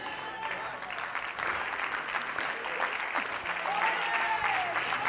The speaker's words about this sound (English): Clap and come with me. Clap and come with me.